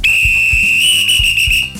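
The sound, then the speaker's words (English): A full-time whistle blows in one long, loud, shrill blast, held steady at a high pitch for about two seconds, with a few dull low thuds underneath. “That is full time.”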